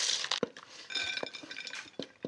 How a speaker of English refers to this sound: So we'll pour it right over the top and I'll stir it around and get them nice and evenly coated.